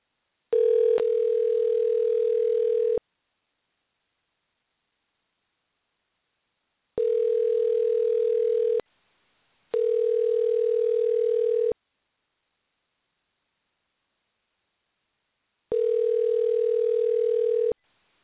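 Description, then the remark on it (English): A steady telephone dial tone comes in four separate bursts of roughly two seconds each, broken by stretches of silence. It is fairly loud, with a faint hiss underneath. “Try it again, Gray. Hit the phone the wrong way.”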